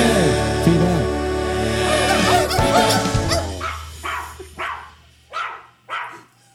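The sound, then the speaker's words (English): Coyotes in the mountains yip and howl together in a dense, high-pitched chorus, which thins out into a few separate sharp yips spaced about a second apart at the end. “We woke up the other coyotes in the mountains.”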